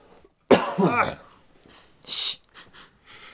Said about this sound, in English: Oh, you didn't have anything to add? That was just the cough?